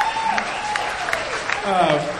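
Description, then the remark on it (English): An audience applauds steadily for a couple of seconds, a dense, even patter of clapping with some voices calling out and cheering over it. “How about a round of applause for this guy being alive?”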